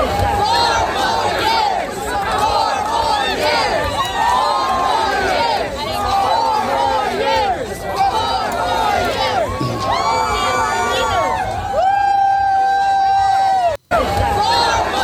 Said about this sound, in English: Look at that crowd.